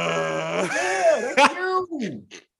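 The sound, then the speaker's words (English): A person imitates a whale call with a drawn-out, wavering moan that bends up and down in pitch, fairly loud, ending in a few short falling groans. “I learn a lot of things on the daily, but for you to be a whaleologist in this conversation is fucking crazy. What do they be saying?”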